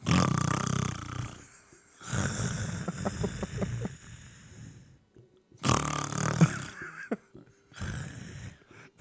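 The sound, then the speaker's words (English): A voice imitates loud, gasping snores: three ragged, rattling inhales, each a harsh throaty rasp with wet clicks, separated by brief pauses, forceful. “You sound like you're fucking trying to eat your esophagus when you're snoring.”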